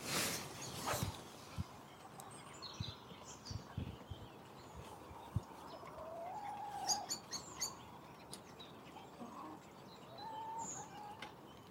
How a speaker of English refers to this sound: The birds never seem more active than when there's a struggle on. If it's cold, or it's autumn, or it's spring, or they're busy, make a right racket.